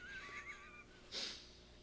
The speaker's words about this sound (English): I gasp.